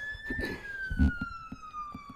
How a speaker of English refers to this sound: We'll let the sirens pass.